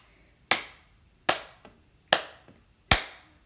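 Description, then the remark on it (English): Four loud, sharp hand claps spaced evenly about a second apart, each with a quick echoing decay, heard alone with no talking. “Wow, my clapping is loud enough to create those big sound waves right there.”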